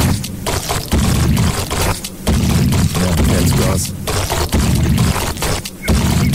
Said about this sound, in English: So the spoon is like slamming into the bottom of the pot, scraping across, spinning around, going side to side.